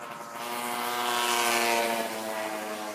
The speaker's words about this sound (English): two-stroke scooter